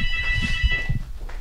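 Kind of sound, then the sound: signal or alarm, telephone ringing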